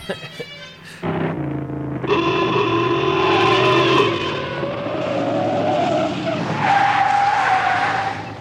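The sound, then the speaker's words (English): Tires squeal in long, high-pitched skids through a series of sharp turns, loud, with a car engine roaring underneath and the screech rising and shifting in pitch. “That is a great car, man. Fuck, it handles great, man. Left, right is great. Brakes stop on a fucking dime.”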